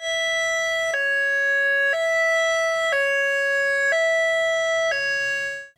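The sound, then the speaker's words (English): A loud two-tone high-low emergency siren, used by first responders in Nevada County for direct emergency notifications in neighborhoods, alternates steadily between a higher and a lower pitch about once per second, repeating for several seconds with no talking, then cuts off. “deputies on the ground or first responders with their high-low sirens doing direct notifications”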